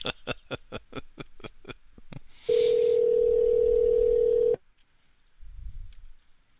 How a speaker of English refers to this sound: They're not good at answering the phone here. This is their way of getting rid of annoying lawyers. Think they have like a lawyer button on their phone?